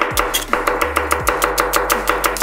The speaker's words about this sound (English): So, you take the onion, take the core. As you can see, I'm chopping the onion rather finely. No need to look if you know where the blade is.